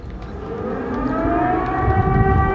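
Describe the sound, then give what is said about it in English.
Air raid sirens wail steadily in Kyiv, Ukraine, on the sixth day of the Russian invasion, their sustained tones rising slightly in loudness and layering over a low rumbling background, echoing across an open area. “Air raid sirens in Kyiv as a Russian invasion of Ukraine now in its sixth day.”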